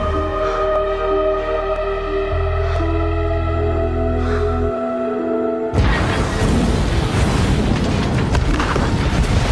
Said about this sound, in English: Right there at the exact moment of the explosion, we see Elvis going to throw his arm up and then a shot of Hitler's hand over the crowd.